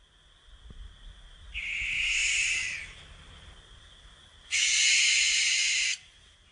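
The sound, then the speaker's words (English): Two harsh, hissing screeches of a barn owl, the first drawn out for about a second and a half, the second louder and longer, alone against quiet background. “This, my dear friends, my dear co-hosts, and my dear listeners, is the scream of the barn owl.”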